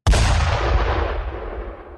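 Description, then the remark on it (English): A single tiny cannon blast goes off, a sudden sharp boom that rolls into a long rumbling echo fading over two seconds. It's loud, with no voices. “A tiny cannon, it says. A tiny cannon.”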